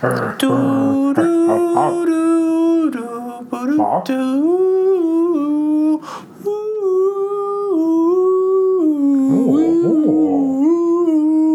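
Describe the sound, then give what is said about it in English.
A voice hums or croons a slow, gentle melody in imitation of a peaceful flute tune played to mountain creatures, holding long steady notes that step up and down in pitch, loud for about eleven seconds. “I pull out my flute. And I play, I'm going to play a nice, like, peaceful.”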